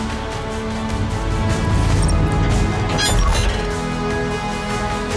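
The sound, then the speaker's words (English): A sci-fi spaceship door opening as the spaceship lands gently: a loud, steady mechanical drone swells midway into a bright hissing, clattering burst, then settles back into the continuous hum. No one speaks. “As the spaceship lands gently, you hear the door open.”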